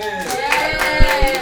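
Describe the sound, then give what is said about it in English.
After a debate, a crowd cheers and claps to vote for team latecomers, with scattered, uneven hand claps while sustained voices cheer underneath at a moderate, steady level. “Cheer for team latecomers.”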